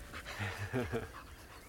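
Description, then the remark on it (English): A dog pants in quick, rhythmic breaths, about five short huffs in a row, fairly soft against a faint background hiss. “And the panting of the dog.”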